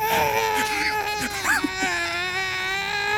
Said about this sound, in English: You hear this echoing almost gnomish cry from far away.